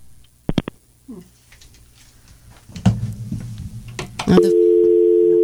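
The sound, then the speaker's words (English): A few sharp clicks and low line hum on a caller's phone line, then a loud, steady electronic phone tone cuts in and holds for the last second, like the disconnect tone of a dropped call. “I think this dropped.”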